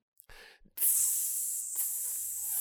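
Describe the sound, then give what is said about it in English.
Bacon sizzles in a loud, steady, bright hiss that starts abruptly after a few short soft noises and holds evenly to the end, with a faint low hum beneath and no talking. “That's a horrible sizzle.”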